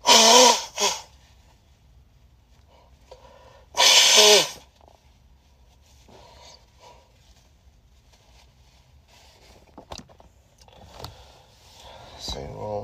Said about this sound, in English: Stretching. Blow my nose real quick. Sorry, I'm just not gonna stop it.